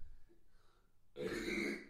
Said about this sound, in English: Hold on one sec. I got to burp and take a breather. Hold on.